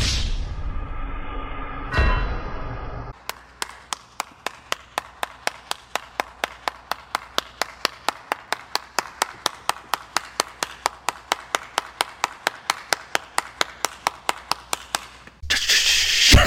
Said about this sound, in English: Round of applause.